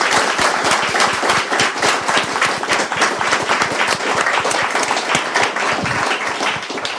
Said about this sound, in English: Can we give her a huge round of applause? Thank you so much.